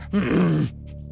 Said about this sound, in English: All that seems to trickle out is a low groan.